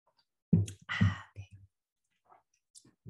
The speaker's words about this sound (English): All right, here we go. Wait, one more sip of cacao.